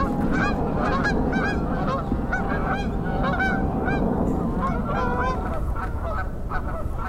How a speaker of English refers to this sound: Oh, here comes Canada geese.